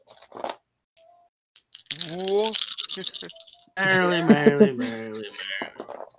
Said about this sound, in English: Alright, roll for the damage on the entire roll. Alright. Roll. Roll your dice.